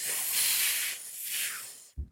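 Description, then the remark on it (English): A voice imitates drinking through a straw: a breathy, high hissing suck that swells in two or three surges, then cuts off with a short, low pop. “It's not a slurp, first of all. Oh. Yeah, it's drinking through a straw.”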